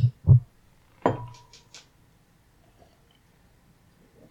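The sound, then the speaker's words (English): Two quick clinks of beer glasses knocking together in a toast, followed by a brighter ringing tap that fades, then near silence with faint handling noise. “Cheers, man. Cheers, brother.”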